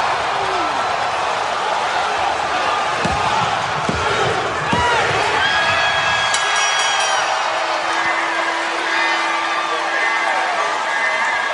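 A wrestling crowd roars and cheers wildly without letup as Jeff Hardy wins a steel cage match, with a few heavy thuds early on and shrill whistle-like tones cutting through the din later.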